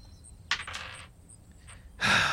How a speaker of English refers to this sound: I shouldn't have used this dice. 6.